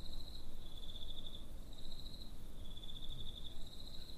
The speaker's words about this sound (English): Can you insert crickets here? Please, please do.